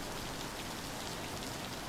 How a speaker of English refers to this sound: He is afraid of running to the door in the soaking rain, scratching at the patio glass and barking for attention. He does not want to get drenched. He howls into the wind and rain instead. His lament is lost in the noise of the storm.